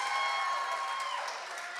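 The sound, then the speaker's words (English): An audience claps steadily in a dense, continuous patter, with some voices cheering faintly above the applause. The clapping stays fairly even in loudness throughout, easing off only slightly toward the end. “Wait, keep clapping.”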